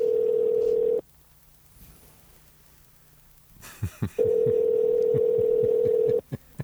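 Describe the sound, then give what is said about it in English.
A steady telephone dial tone hums, cuts to a quiet pause, then a few short dialing beeps and clicks come as someone dials to call a man, before the dial tone returns, followed by more quick clicks. Clear, with no voices. “I think we should call him right now and find out what the hell is going on.”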